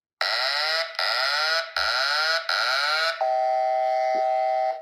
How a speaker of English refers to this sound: It's the quiz. Here we go then. Let's test the buzzers this week.